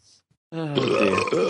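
A single loud, drawn-out recorded burp is played back, rumbling for about a second after a brief stretch of near silence, with no talking around it.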